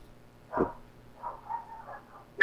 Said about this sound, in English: Oh, all the dogs are barking.